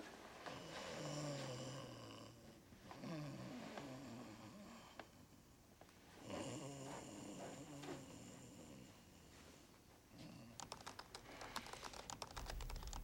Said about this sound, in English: This is one of the scenes that I think really does it. And the snoring was … idea.